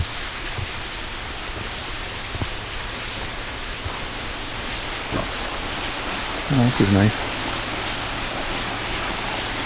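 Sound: small waterfall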